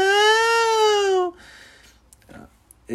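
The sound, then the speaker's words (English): A single loud, drawn-out whining cry, about a second long, with a toddler-like wail of protest crying out "no" that bends slightly in pitch, the sound a cast member makes on the show, then quieter rustling and faint background noise. “I would attribute this noise to something a toddler would make when he goes, no!”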